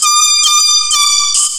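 A loud, blaring air horn sound effect, a sustained harmonic-rich blast with rhythmic pulsing bursts repeating about every half second, with no talking.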